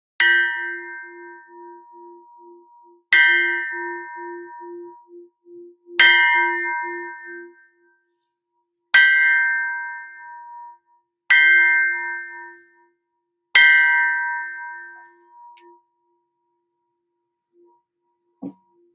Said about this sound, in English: So this is my Tibetan bell. From Tibet.